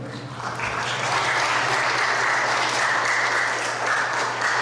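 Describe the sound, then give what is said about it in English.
Steady audience applause for an organ player who has just played Chopsticks, a dense wash of many hands clapping at an even loudness for several seconds, with a low steady hum underneath and no talking. “I guarantee you that's the only time any organ player has ever gotten applause for chopsticks.”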